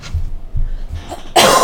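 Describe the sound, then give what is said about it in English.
A coughing fit: several quick, harsh coughs in a row, ending in a loud, breathy burst, with no talking. “Cough break.”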